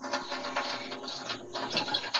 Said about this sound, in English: I think Baylor, is that the garbage disposal? Yeah, I think it's running water on his turkey. I think the turkey fell down the garbage disposal and he hit the wrong button. Big ass garbage disposal.